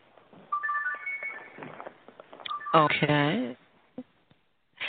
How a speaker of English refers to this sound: Okay, that's your phone. I'm sorry, I'm going to turn it down here.